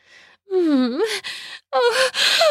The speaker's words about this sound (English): I gasp when his mouth lands on my nipple.